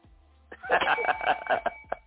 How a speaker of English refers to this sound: Well, I don't hear that bell. Do you guys hear the bell just yet?